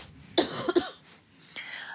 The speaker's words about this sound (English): Well, okay, hold on. I'm coughing.